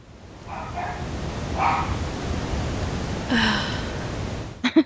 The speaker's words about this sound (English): Who is that? Is that still your dog? Yeah, just it sounds funny.